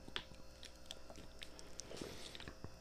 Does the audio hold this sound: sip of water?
yes